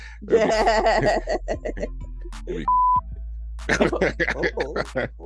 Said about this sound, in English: Okay. You know, so you can beep that out